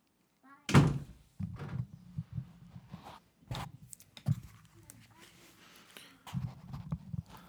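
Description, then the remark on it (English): A bedroom door is shut for a child's nap with one solid thunk near the start, followed by softer shuffling knocks and faint muffled voices. “Can you close my door, please?”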